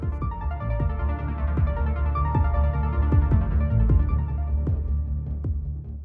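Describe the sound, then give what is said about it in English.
A low, droning hum, the Seattle hum in the northwestern United States, fills the whole recording. It throbs steadily with soft rhythmic pulses roughly every second, with faint tonal overtones above it. No one speaks. “Recently, that terror has arrived in the form of an inescapable humming, and no one knows where it's coming from.”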